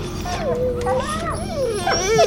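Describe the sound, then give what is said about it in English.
Dogs whimper and whine in high, wavering cries that rise and fall, fairly steady, as they settle down, sitting and lying down and going quiet, with soft background noise underneath over a couple of seconds. “The dogs, they're sitting, lying down. You did that? You made them quiet?”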